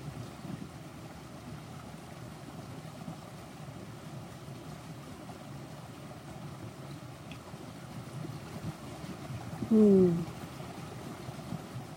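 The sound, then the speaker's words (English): A stream flows steadily with a continuous rushing, babbling wash of water at moderate level, broken only by a brief, sharp whistling call near the end. “I'm feeling the water inside this vessel, this body, synchronizing up with the water in the stream.”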